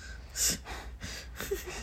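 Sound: imitated heavy breathing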